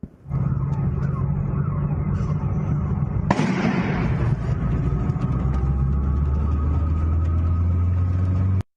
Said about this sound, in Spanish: Son los reportes ciudadanos, ¿no?, de la segunda explosión.